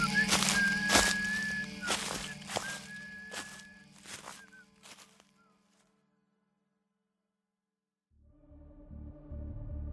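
A person whistles a tune from the movie Willy Wonka and the Chocolate Factory over crunching, swishing footsteps through dry leaves, both fading into the distance over several seconds before quiet takes over.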